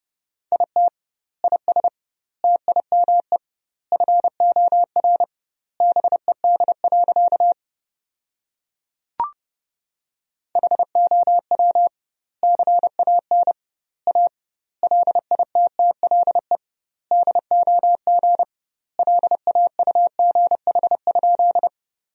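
Morse code at 30 words per minute with double word spacing, sending sentences from the top 500 words: a single steady mid-pitched tone keyed in rapid dots and dashes, grouped into words with short pauses and one longer break midway marked by a faint click.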